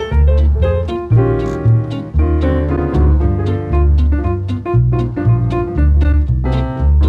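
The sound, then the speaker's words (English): A jazz piano recording plays steadily and fairly loud, with rhythmic chords and melodic runs over a walking bass line, with no voices. “This is not a holiday song, but his tone on the keys might sound familiar.”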